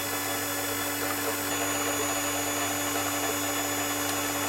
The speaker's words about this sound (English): What we're doing now is we're lowering the drill in order to find the surface, and what we'll see is that when the drill touches the top of the strain gauge, there'll be some swarf as the top layer of the strain gauge is removed.